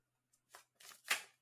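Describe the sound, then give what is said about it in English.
A deck of cards being shuffled: a few quick papery riffles and flicks, building to a louder final burst, with no one speaking. “No, I'm going to shuffle.”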